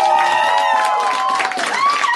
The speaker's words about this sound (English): Don't applaud Erin being sick, you assholes. That's very rude.